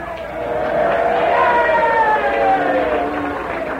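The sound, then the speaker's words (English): Several voices hum the army bugle pay call together, a sustained melodic line imitating a military trumpet with a rising and falling tune, fairly loud, with a crowd-like murmur around it. “Who in this crowd can tell me how pay call went?”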